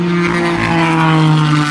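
A loud, steady engine roar from a race car coming past in the dark under floodlights, holding a constant droning pitch throughout with no voices present.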